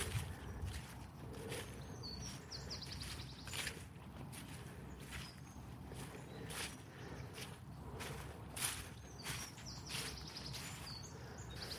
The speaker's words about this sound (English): That was the dodgiest stile I've climbed in many a time.